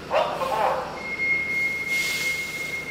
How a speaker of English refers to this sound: The 85 bus pulls up in front of the senior center in Lawrence, Massachusetts.